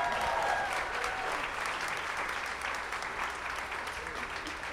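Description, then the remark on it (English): A crowd applauds the people who made a show, a steady, dense wash of many hands clapping at once, sustained and fairly loud throughout, with no pauses or talking over it. “So these are the people who made Station 11. Give them a round of applause.”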